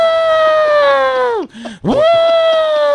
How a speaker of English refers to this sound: That's kind of your whine cry. That was a whine. Sounded like a little bit like an elephant.